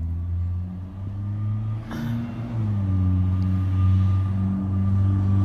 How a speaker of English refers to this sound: All right, we'll let the car pass. Cars will probably be continuing to pass, though.